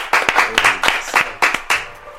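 Several loud, sharp hand claps in an uneven rhythm, with a brief whooping cheer mixed in beneath them as they continue.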